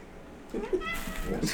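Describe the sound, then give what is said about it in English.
A female cat meows close to the microphone, a short rising-and-falling call followed by a second brief mew, loud and clear against a quiet background. “Really, cat?”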